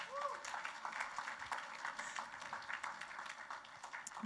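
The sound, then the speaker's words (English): A crowd applauds for a worship team member: a dense wash of many hands clapping at once, sustained and fairly even for several seconds, with no one speaking over it. “Can we clap for Hannah?”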